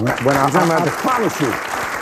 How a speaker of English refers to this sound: And of course, Bill Maher's audience is clapping.